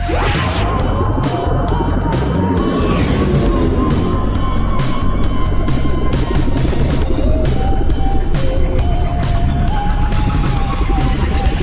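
wolves howling

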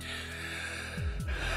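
man gasping

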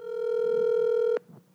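telephone call being dialed

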